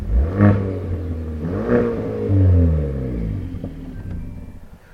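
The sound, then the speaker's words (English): A Hyundai i30N Performance Fastback's engine revs hard twice in quick succession, each blip rising then falling, with a deep, throaty exhaust rumble that settles into a lower idle burble afterward. “Can't deny that the performance side of it sounds great there. Tell you what, let's just give it another blip.”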